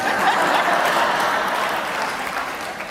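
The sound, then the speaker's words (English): An audience claps steadily for about three seconds, a modest patter of hands holding an even level throughout, with no voices over it. “Not as many claps.”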